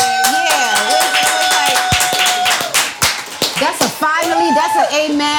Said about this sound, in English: That's a amen hand clap.